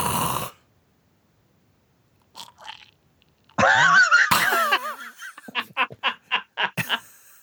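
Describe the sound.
A voice imitates a snore: a brief noisy burst, a long silent pause like a held breath, then a loud rasping snort followed by a rapid series of short gasping puffs.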